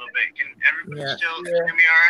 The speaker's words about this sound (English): Is anyone else getting some crazy echoing? Bad feedback, yes. Yep. A little bit of feedback. That's what I was trying to fix.